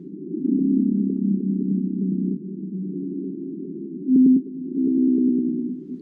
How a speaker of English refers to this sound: Well, here's a blue whale sound.